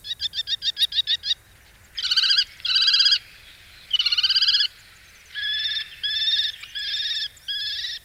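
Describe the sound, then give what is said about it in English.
A falcon, a kestrel or peregrine, calls loudly on its own, opening with a quick run of sharp clipped notes, then several longer harsh, grating screeches repeated in steady bursts. “All the birds of prey have very similar sounds, and if you're trying to identify them by sound, most of them are quite similar. Kestrel and peregrine are quite similar.”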